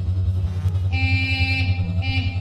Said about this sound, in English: A car horn cut through the night, the signal that Barry was at the clearing.